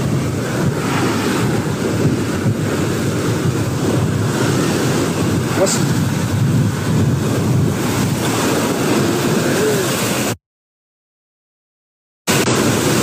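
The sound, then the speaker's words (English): Loud, steady rush of ocean waves and wind buffeting the microphone out on open water, continuous, broken by a brief drop to silence near the end before the roar returns. “It's a lot of water out here.”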